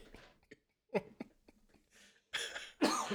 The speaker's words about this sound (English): Oh, shoot. COVID cough.